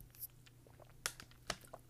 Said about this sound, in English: I'm sorry, I had to drink water.